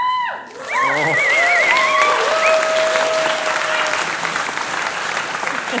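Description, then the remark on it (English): An audience breaks into loud, sustained applause for a guest coming to press a big red button, the dense clapping holding steady with warbling whistles and cheers rising above it. “All right, so if you give a huge round of applause, we've got our wonderful guest to come and press our big old red button.”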